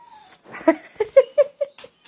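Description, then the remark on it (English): A dog, not hurt, whimpers and vocalizes, a string of about six short, whiny, pitched yelps that step downward in tone, with no one speaking. “You talk a lot with that it's like whimpering, but it's not really whimpering because then he grins at you.”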